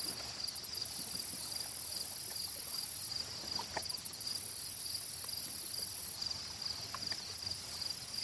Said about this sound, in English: The crickets start. start to replace the sound of birdsong in the forest. As the sun finally sets into the lake.